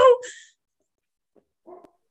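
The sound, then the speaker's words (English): A dog barking at the mailman gives one loud bark, followed after a pause by a couple of short, much quieter yips. No one is talking. “He's still barking at the mailman.”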